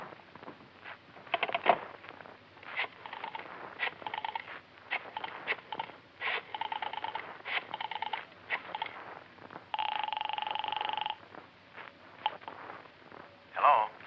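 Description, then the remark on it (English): A telephone being dialed: a quick, uneven series of short electronic tone beeps, then one longer sustained tone, moderately loud against a faint hiss. “Can I use your phone?”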